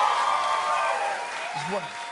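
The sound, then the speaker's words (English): A studio crowd cheers and applauds in a steady, dense wash of clapping and voices that holds at an even level for a couple of seconds, with a few shouts rising above it. “Listen to this crowd, man.”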